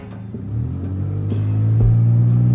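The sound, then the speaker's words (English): A car engine rumbles and revs upward as the driver turns on the ignition and accelerates towards the highway, its low droning pitch climbing steadily, growing slightly louder over a few seconds with no one talking. “He turned on the ignition and started accelerating towards the highway.”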